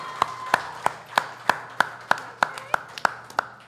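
Applause at a show as a young performer is introduced: about a dozen sharp, evenly spaced claps in a steady rhythm, loud and crisp over a faint, low background hum.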